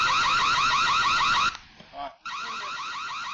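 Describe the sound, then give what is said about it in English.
A loud security alarm wails with a fast, repeating electronic warble as people scramble away, cuts out briefly midway while a short voice-like sound is heard, then resumes at full volume. “So the alarm starts going off, and watch all these motherfuckers scramble like cockroaches.”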